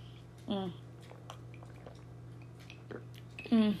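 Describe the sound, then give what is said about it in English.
Wet gulping and swallowing as someone takes a big chug of Coca-Cola poured over ice, with a short burst near the start and a louder one at the end, quiet mouth noises between, over a steady low electrical hum. “You guys, I bought some Coca-Cola because I haven't had some in a while, so I just had a big chug of that.”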